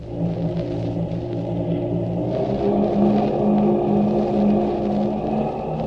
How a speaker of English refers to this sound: I hung on. The torpedo boat almost leaped out from under us as the engines opened up.